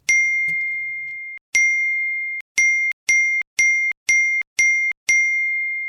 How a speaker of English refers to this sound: The phone started pinging. Slowly at first, but picking up speed until it became a torrent of noise.